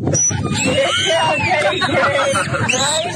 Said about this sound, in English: That dolphin is angry. That dolphin's about to murder.